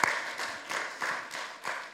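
An audience applauds the mothers on Mother's Day, a steady wash of many hands clapping with soft rhythmic swells, moderately loud and continuous with no voices over it.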